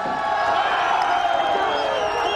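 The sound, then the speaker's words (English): A large crowd roars and cheers continuously as a statue slowly comes crashing to the ground, a dense wall of shouting voices at a steady, loud level throughout, with no single voice standing out. “Anyway, this thing starts backing up, and you see the statue slowly come crashing to the ground, and the crowd went wild.”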